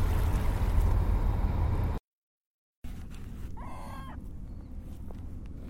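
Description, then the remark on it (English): Steady low rumble of dockside water and boat noise, briefly cutting out, then returning as one harsh seagull call rings out clearly above the background. “I'm sitting at the dock area now.”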